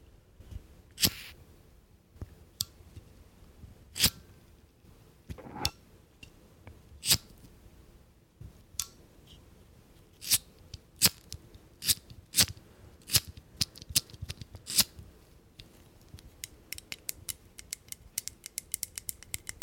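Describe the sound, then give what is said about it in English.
A lighter being flicked over and over, sharp crisp clicks and snaps at an uneven pace that quicken into a rapid run of clicks near the end, with no voices. “So the first thing I have here is my favorite lighter”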